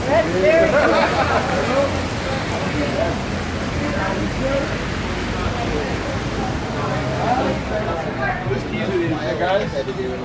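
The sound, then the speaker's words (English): Steady rain falls outdoors in a dense, hissing wash that holds constant throughout, with faint voices murmuring indistinctly underneath. “Here, check out the rain.”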